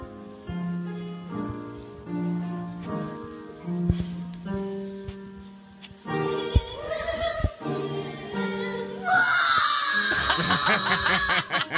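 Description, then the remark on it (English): A boy of about 4 or 5, standing in front of a choir, screams loudly over steady sung notes, the shrill cries growing harsher and more strained toward the end, dominating the singing beneath. “Yeah, screaming. That's all he does the whole time.”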